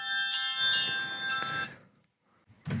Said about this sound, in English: Sorry, my fucking alarm clock just went off.